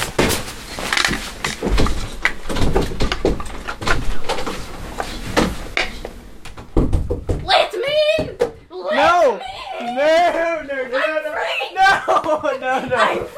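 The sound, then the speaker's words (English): Loud, rapid thuds as someone with a big stick bangs against a door, apparently trying to break the door or doorbell, striking irregularly for several seconds before stopping, after which people talk and laugh. “Guys, there's someone with, like, a big stick, and he's trying to break your doorbell or door or something.”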